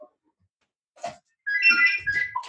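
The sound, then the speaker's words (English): A phone rings with a short burst of bright electronic ringtone notes, fairly clear, after a brief soft sound and a moment of quiet, with no one talking. “let me just try and stop that phone from ringing.”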